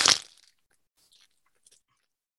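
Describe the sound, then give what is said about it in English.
A loud, harsh burst of crackly static that fades within half a second, followed by two faint, brief crackles. No one speaks. “Heard all that static?”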